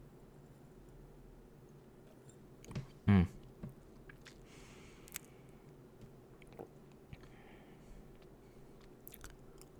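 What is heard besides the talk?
sipping whiskey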